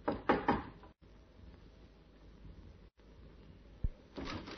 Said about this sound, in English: The lock on the door fascinated him. The urge to try out the key in his pocket was almost overwhelming. But instead, he knocked.